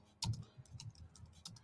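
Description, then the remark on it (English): Rapid keyboard typing, a quick run of soft clicking keystrokes, with one sharper tap near the start and no voices. “I'm just typing this in for my Instagram folks.”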